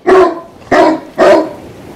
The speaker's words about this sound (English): Crazy dog. Doesn't play in the water, but barks at large rocks.